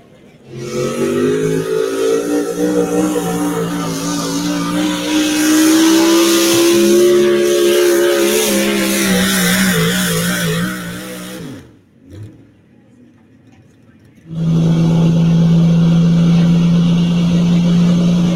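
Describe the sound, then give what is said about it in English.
A pulling tractor's engine roars loudly, its pitch climbing as it revs hard, then drops out for a couple of seconds before returning at a steady, heavy drone; the tractor, with no air ride front and a narrowed front end, is making a pass. “It was a perfect pass last year. Looks the part. That thing just looks the part. Love that tractor.”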